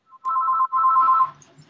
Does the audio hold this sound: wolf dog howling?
no